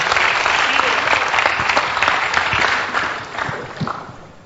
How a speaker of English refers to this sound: Clap for Jesus.